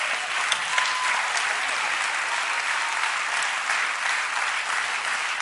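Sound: audience clapping hands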